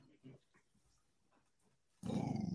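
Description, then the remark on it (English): A low growl from a dog named Deku erupts suddenly and rumbles on loudly, following a stretch of soft, quiet murmuring and faint movement. “Why are you growling at me?”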